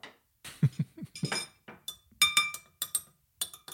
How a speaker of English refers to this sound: What is that? Is that you dinging your glass?